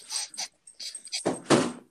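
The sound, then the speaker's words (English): An Australian Shepherd mix dog at a door after someone rang the doorbell: a few brief, scratchy hissing sounds, then two louder, fuller bursts, with no talking. “Keegan's at the door”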